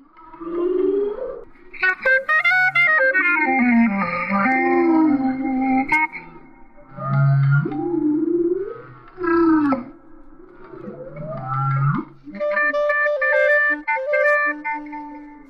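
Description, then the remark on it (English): Humpback whale song blends with a clarinet in a live performance: long moaning, sliding whale calls rise and fall in phrases, while the clarinet plays steady reedy notes that come forward near the end. “Here's a clip from a live performance of some serious blowhole blues featuring Rothenberg and a humpback whale.”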